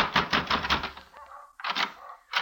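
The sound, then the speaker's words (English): Hard, rapid pounding on a hotel room door two flights up, in a third-rate hotel near the Hassan Bazaar: a quick burst of loud knocks, a brief pause, then a few more heavy thumps. “I took the steps up 2 flights and slammed at McQuill's door.”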